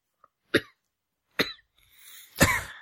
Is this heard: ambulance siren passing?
no